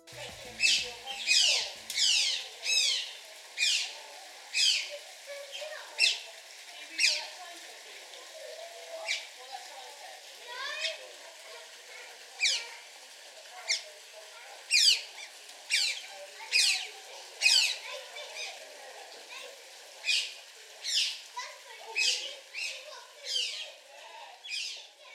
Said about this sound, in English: What you just heard was the delightful sound of two otters squeaking playfully together in an unnamed wildlife park.